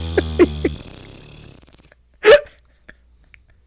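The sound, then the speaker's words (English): A low, buzzy raspberry blown with the lips as a mouth-made fart noise, sputtering in a few quick pulses before trailing off, then near quiet broken by a short breathy burst and a faint click. “Should I just make a fart noise and then we'll end the podcast with that?”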